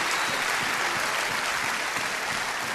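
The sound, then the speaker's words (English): A church audience claps together in steady, sustained applause as a clap offering to God, a dense wash of many hands at even loudness throughout, with no voices rising above it. “I think we owe God a clap offering.”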